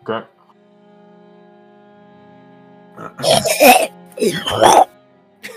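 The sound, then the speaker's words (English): A voice imitates the coughing and horking throat sounds of a character recovering from strangulation: a short grunt, a pause with faint background hum, then two loud, raspy bursts of harsh hacking and throat-clearing. “kind of making horking sounds right now”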